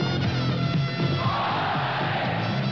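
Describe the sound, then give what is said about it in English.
A large crowd roars and cheers continuously in a commercial for the Ford Fiesta car, a dense wall of shouting voices and whoops that stays loud and steady throughout, with no individual speech standing out. “See what the cheering's all about at your Southern California Ford dealer.”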